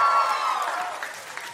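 A live audience at the Bell House in New York claps and cheers loudly, with a few high whoops riding over the dense applause. The burst starts strong and tapers gradually over a second and a half.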